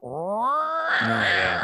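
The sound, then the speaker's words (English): A person imitates the low, guttural meow of an older cat with cognitive decline in the middle of the night: one drawn-out, rising and falling yowl with a rough, strained edge, delivered loudly with no other sounds. “that real guttural meow in the middle of the night.”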